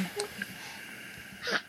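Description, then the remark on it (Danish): A single short, soft sneeze bursts out near the end after a brief quiet stretch, with a faint click or breath just before it. No talking is heard. “Prosit!”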